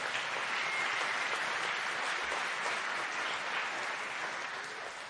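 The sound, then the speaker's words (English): An audience gives God a hand clap of praise, clapping steadily, dense, overlapping hand claps forming a loud, sustained wash of applause that holds evenly for several seconds, with no voices above it. “Can you do me a favor and give God a hand clap of praise?”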